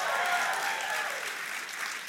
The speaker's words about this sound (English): Come on, if you're going to clap, do it well. Celebrate Jesus.